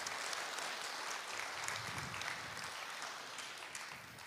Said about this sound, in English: What an amazing story that is. And yeah, I think we should clap for that one again, just because I need to.